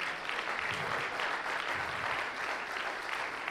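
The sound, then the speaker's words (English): An audience claps steadily, a dense, even wash of many hands with no clear individual beats, holding a constant moderate loudness throughout without any voices. “And I think I know why you're clapping, because there's a lot of other people that are ready to die for it.”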